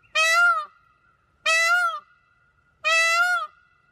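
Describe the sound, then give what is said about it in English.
A peacock calls three times, loud, each shrill, wailing cry lasting about half a second with a steady pause between them and silence in the gaps. “It is a peacock call.”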